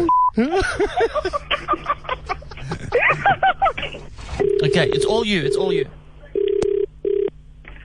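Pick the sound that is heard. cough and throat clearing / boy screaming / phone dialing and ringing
phone dialing and ringing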